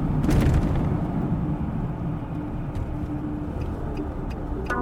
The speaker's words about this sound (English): We drive back into the park. A moment later, we pull up next to my car, which looks very much not broken into.